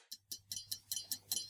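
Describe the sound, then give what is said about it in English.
A digital countdown clock, counting down from 30 minutes, ticks quickly and steadily, about eight crisp, bright clicks in under two seconds, with a faint low hum running underneath and no voices. “Merv's leaking oil, and that digital face has been replaced with the digital clock counting down from 30 minutes.”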